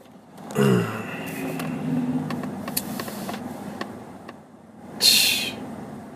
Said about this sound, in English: It's traffic. I mean, when isn't there fucking traffic, I guess I should say.